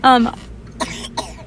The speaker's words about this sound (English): sorry, kid coughing in the background.